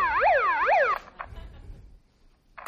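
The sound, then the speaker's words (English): A loud siren sweeps up and down twice in quick wails, then cuts off abruptly, leaving low background rumble and a faint noise near the end. “Bullhorns are great. Sirens are cool.”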